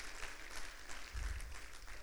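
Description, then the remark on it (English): An audience claps together in a steady, dense wash of many hands, holding an even loudness for the full two seconds with a low rumble underneath and no clear voices. “Go ahead and clap if you believe it just a little bit.”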